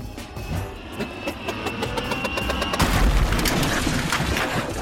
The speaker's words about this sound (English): Yeah, don't mind us. Just knocked over a trash can or two on impact. Nothing to see here.